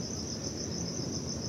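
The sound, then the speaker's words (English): Crickets and other insects sing in a forest at night in a steady, high-pitched chorus, a continuous shimmering trill with a soft pulsing texture over a low background hum, with no voices. “But the owls and the insects were the wind and the leaves, and there was just lots of singing.”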